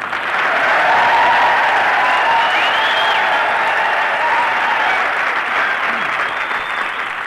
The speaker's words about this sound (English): Here we are at old Camp Callan. All right, boys, come on, start yelling.